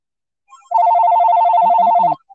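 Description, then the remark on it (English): A telephone rings with an incoming call, a loud, rapid, evenly pulsing electronic trill lasting over a second, clear, with a faint low murmur near the end and no talking. “Wait, we got a caller, y'all. We got a caller.”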